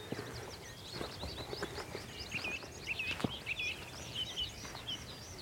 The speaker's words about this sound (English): That sounds like a meadow pipit just singing from out in the field. Or is it a tree pipit? Tree pipit.